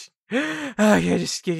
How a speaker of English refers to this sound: It's hard to talk to you when you're breathing heavily.